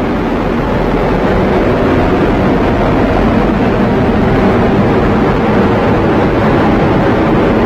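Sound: rocket engine roar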